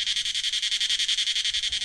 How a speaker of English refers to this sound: Oh, a cicada.